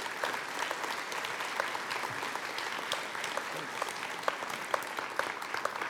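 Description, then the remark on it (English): Steady applause from a sizable audience at Mount Carmel welcoming a guest as he comes out to join the host, dense clapping that continues evenly for several seconds with a few sharper claps standing out, moderately loud. “I'd like for you to give a warm Mount Carmel welcome to Salim as he comes out to join me”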